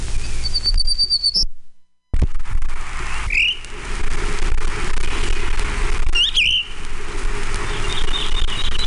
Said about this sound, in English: Townsend's warbler.